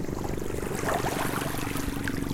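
A dive boat's engine chugs steadily in a continuous low rhythmic drone, with faint splashing water underneath and no voices, just off an island near Bohol and Cebu in the Philippines on a clear, hot day with little wind or waves.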